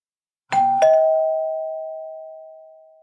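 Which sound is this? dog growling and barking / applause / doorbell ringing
doorbell ringing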